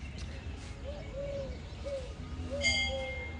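Peacock calls echo over a low outdoor rumble at a lake, a few short cooing notes followed by a brighter, more nasal cry near the end. No one speaks.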